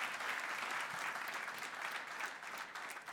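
An audience applauds steadily, a dense wash of many hands clapping at an even level for the whole stretch, with no voices standing out.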